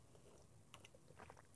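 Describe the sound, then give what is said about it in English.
Quiet sipping of water from a goblet, with a few soft mouth clicks and light slurps, scattered over a second or so against a hushed background, with no talking. “I've got my birthday babe goblet, and I'm gonna sip on some water.”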